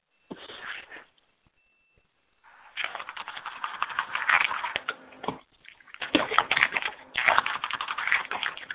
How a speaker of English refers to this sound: What is that noise? I was going to ask you that. I'm typing. I'm typing, sorry.